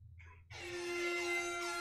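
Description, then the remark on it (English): After a brief low rumble, a loud, blaring MLG air horn sound effect, played by a Google voice assistant, cuts in and holds steady and harsh, filling the rest of the moment with no voices. “play an air horn sound. Sure, playing …, MLG air horn.”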